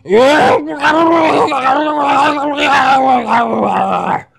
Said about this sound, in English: I was in the call just long enough to hear the raging, blubbering screams of a whale with Tourette's syndrome before I left myself.